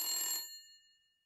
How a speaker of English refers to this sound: Svetlana is in her flat when the phone rings.